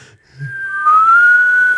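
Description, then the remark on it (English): A single sustained whistle, a thin steady tone held for over a second with a breathy, airy edge, as if drawn inward on an inhale, with no talking. “My dad can only whistle in, and so it's so funny. He'll be like... He like runs out of breath.”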